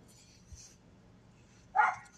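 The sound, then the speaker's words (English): A small dog lets out one sharp, high-pitched yap near the end, fairly loud, after a quiet stretch of faint background noise. “Fucking shut up, you stupid yapping fucking beanie baby.”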